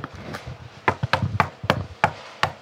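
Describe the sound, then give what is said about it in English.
A series of about eight sharp, hollow knocks on the wooden front door of a house in Los Angeles, uneven in rhythm, with no one speaking. “Please knock loudly.”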